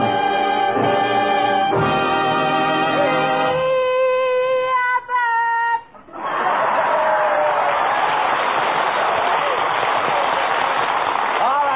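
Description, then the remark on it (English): A short band fanfare plays for about six seconds as Bud Abbott and Lou Costello are introduced on a radio show transcribed in Hollywood, then a studio audience erupts into loud, sustained cheering, yelling and applause that continues steadily to the end. “All right, stop the yelling.”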